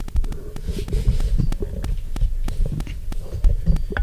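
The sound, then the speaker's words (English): Crackling static from a technical glitch: sharp irregular clicks pop over a steady low rumbling hum, fairly loud and continuous for a few seconds, with no voices. “Yeah, we'll run through that little static part.”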